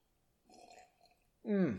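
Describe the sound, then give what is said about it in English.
A quiet slurping sip from a pretty big glass of 101, followed by a short pause and then a loud, voiced exhale that falls in pitch, like a satisfied gasp or small burp. “Speaking of which, let me just have a sip.”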